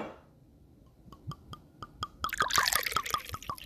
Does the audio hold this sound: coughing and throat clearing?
no